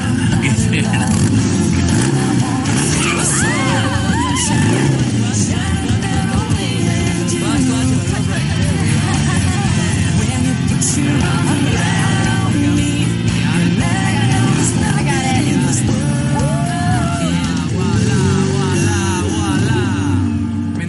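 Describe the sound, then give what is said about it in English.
A motorcycle engine runs steadily, its pitch rising and dipping as it revs and pulls away while a learner rider eases out the clutch to take off, with muffled voices mixed into the constant engine roar. “Okay, a little give and a little go.”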